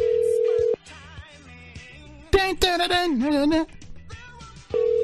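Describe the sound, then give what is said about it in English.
A steady outgoing ringback tone buzzes at the start, falls silent, then returns at the end; in the gap a brief wavering, meow-like vocal sound rises over quiet background chatter. “answer your phone!”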